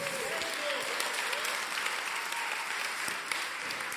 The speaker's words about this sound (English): Oh, you can clap better than that. Come on.